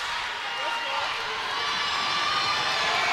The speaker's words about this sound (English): You can hear this crowd, capacity crowd at Pearl City getting into it.